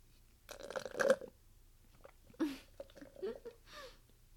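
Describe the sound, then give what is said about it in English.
Wet slurping as someone sips through a straw, a longer gurgling pull followed after a pause by a few shorter, bubbly sips, with no one speaking. “Sorry, I was sipping from my straw. I didn't know it was gonna be so loud like that.”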